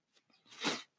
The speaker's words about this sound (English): Hey, and actually, I'm going to leave that sneeze in. I'm not going to edit that out because that's going to come back to another part of this podcast and what have you.